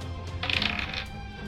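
A quick clatter of dice tumbling across a hard tabletop for a medicine check in a tabletop role-playing game, landing on a 2, a bright rattling burst lasting about half a second over a low steady room hum, then settling.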